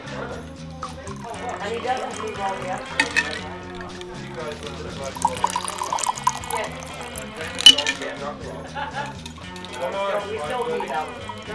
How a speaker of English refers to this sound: So what you're going to do is you're going to pour your juices, your brandy, And I've got the rum in here. You're gonna put that all in your shaker and give that a little shake. And then I'm gonna pour that right into our martini glass.